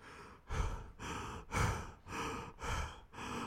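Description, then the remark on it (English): A voice imitates the heavy, out-of-breath panting of someone who has been running: about seven rapid, loud, breathy gasps in a steady rhythm, with no words. “You're breathing mad and heavy.”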